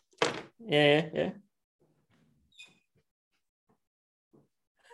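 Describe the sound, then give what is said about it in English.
A door is pulled open to let a fly out: a sharp clunk of the latch, then a loud, brief creak of the hinges. Faint shuffles and small taps follow in otherwise quiet surroundings. “I'm going to open the door, see if he flies out.”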